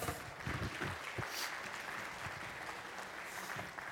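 An audience applauds, many hands clapping in a dense, steady wash of sound that holds at an even loudness for several seconds without any voices rising above it.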